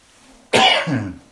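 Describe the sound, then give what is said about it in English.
A single forceful cough from a speaker reading Bible scripture bursts out sharply, followed by a brief rougher throaty tail before fading. No one speaks. “I have to know how to cough properly here.”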